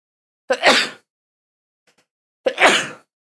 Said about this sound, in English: I'm sneezing over it.